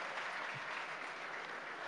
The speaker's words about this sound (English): Paul Hunt will sit down. He gets a round of applause. There's Paul Hunt, because he's done really well.